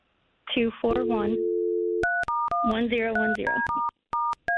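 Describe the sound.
A steady telephone dial tone hums, then gives way to a quick series of touch-tone beeps as the number of a time-and-temperature phone line is dialed, with people talking over the start and in the middle.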